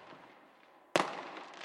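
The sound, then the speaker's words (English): A single loud firework burst cracks out after a moment of low rumbling hiss, followed by a crackling, sizzling tail as the sparks fade. “Fireworks.”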